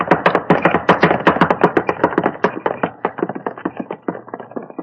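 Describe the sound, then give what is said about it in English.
Horse hooves clatter rapidly and loudly as a horse-drawn cab charges past in fog, its driver driving the horse straight at people on foot, a steady galloping rhythm of sharp knocks that gradually grows fainter toward the end, with no voices. “The cab driver. He's driving his horse straight. Holmes, he's trying to run us down!”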